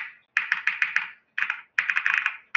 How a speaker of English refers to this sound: He introduced me to Osu one day while we were playing League of Legends. And we were just in a voice chat. And all you would hear was his keyboard go.